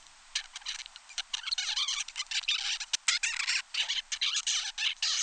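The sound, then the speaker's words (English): A 35-day-old baby zebra finch babbles, a continuous stream of raspy, squeaky chirps and warbles with quick irregular bursts and brief pauses, no voices present. “This is a 35-day-old baby zebra finch.”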